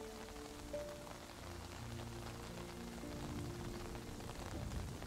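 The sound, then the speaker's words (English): Steady rain falls continuously, a dense hiss of drops spattering on a surface, with low soft tones humming faintly underneath. No one speaks. “Relaxed, calm, and ever so at peace, you stand in the rain.”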